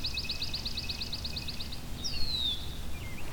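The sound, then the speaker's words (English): A swamp sparrow sings a ringing trill of a dozen or so quick, evenly spaced notes lasting over a second, followed by a single down-slurred whistle, over a steady low rumble. “So it's that kind of ringing trill that is the swamp sparrow.”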